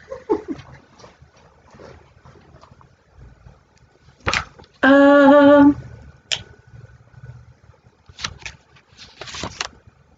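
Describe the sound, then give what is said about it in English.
A mountain lion lets out a single loud, piercing scream lasting under a second, shrill and woman-like, set among scattered knocks and faint rustling outdoor noise. “So I totally believe that if you go into the forest and you hear, especially around here, and you hear, like, a woman screaming, I'm just like, okay, that's a mountain lion.”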